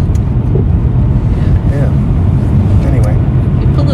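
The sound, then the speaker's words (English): A car rushes by fast, its loud low road rumble filling the whole moment, while people talk faintly underneath the engine and tire noise. “this car came so fast this way.”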